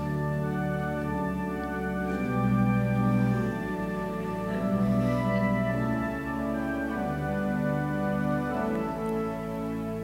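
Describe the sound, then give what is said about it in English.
An orchestral film theme plays without any voices, a low tuba line carrying sustained, stepwise notes beneath brighter harmonies, with a steady, gently rocking pulse at an even, moderate volume. “And again, I'm sitting there, the tuba's playing, and I'm saying, Kevin's not here.”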